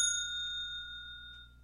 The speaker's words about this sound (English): So I am going to hit the bell.